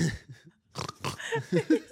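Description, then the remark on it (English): A person mimics a pig: a couple of rough, nasal snorts, a brief pause, then a quick run of short squeaky grunts, fairly loud, with no talking. “I always thought, why do you look like a pig when you fuck? Do you know what I mean? Because your nose is a bit like...”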